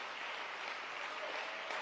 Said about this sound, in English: Can we clap our hands and give God praise right now?